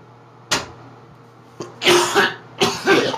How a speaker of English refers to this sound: Hold on, I got clear my throat.